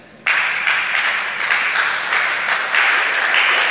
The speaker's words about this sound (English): You can clap better. Don't do it like some. Come on. Wake up and clap for the Lord.